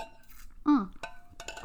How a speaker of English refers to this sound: So cheers to you. I'm just going to have a quick sip.